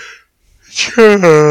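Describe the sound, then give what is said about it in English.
A loud, exaggerated yawn from a single voice: a breathy intake swells into a sustained, throaty, warbling groan that sounds like a Wookiee's roar. “It's just like, that's the eternal yawn, like...”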